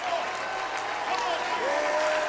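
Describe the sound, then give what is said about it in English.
An audience claps hands in steady, dense applause that fills the whole stretch, with voices calling out and rising and falling tones mixed in underneath. “Oh, if you believe that, you ought to clap your hands.”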